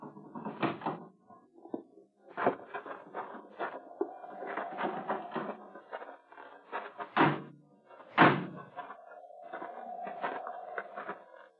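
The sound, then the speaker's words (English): A door creaks open with drawn-out squeaks and rattling handling, then thuds shut with a couple of sharp knocks before another long creak trails off. It is moderately loud. “Open the door.”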